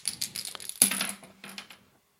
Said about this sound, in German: Ich sollte doch den 20er Würfel nehmen.